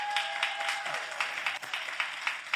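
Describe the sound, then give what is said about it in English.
A crowd claps its hands in a steady, moderately loud round of applause given to encourage their leader, a bishop, many overlapping claps forming a dense patter that continues throughout without anyone speaking. “I thought I would get more hand claps than that.”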